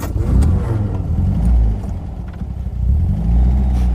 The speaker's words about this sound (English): I was driving a quite old car.